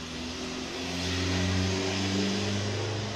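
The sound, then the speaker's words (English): A loud, noisy car engine drones and revs, its pitch shifting steadily as it passes, with broad road noise filling the background and no one speaking. “Look at that noise, you know, the noise, you know, sounds like, I don't know about noisy cars, really.”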